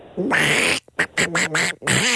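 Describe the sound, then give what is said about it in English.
Someone does a raspy, sputtering Donald Duck-style cartoon voice, a loud buzzy squawk followed by several quick choppy bursts and a final drawn-out gurgle. “That's not Donald Duck. This is Donald Duck.”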